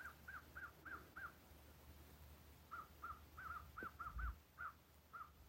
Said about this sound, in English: The crows are harassing an eagle. The eagle flies strong.